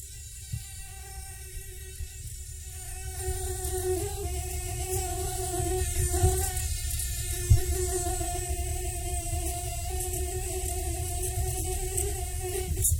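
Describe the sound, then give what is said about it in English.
A mosquito's high, whining buzz drones continuously and steadily, fairly loud, with a faint background hum beneath it and no voices. “I've got a feeling that probably got your attention, and you probably heard it in your ear in the middle of the night, and that's a mosquito.”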